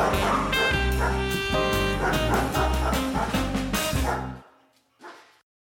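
A dog barks and yips loudly in a quick, steady rhythm over music-like tones. The sound then cuts off, and one short, fainter yelp follows after a brief pause.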